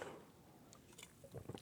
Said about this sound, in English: Let me sip some of this Red Bull.